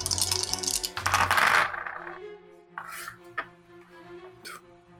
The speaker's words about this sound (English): I'm just gonna roll some dice here. I'm just gonna make sure I find enough of them. Oh, there we go.